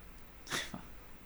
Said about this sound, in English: Bless you.